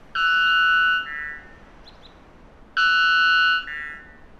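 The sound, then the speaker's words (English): A bird sings two identical phrases a couple of seconds apart, each a strong, steady, buzzy note that steps into a softer, slightly higher tone. No voices. “We've had to attenuate the sound of the bird because of the dynamic range limitations of radio.”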